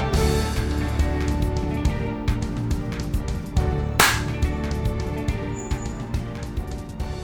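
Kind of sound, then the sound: human body sound, hand claps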